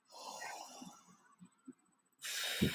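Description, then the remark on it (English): A long, airy deep inhale through the nose, a pause with a few soft low thumps, then another loud rushing breath starting abruptly near the end. Fairly loud, with no talking. “I just do one breath. Do a few.”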